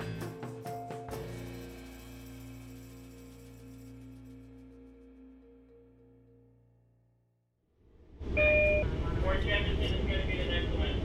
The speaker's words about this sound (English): We're on a Long Island Railroad train from Penn Station to Port Jefferson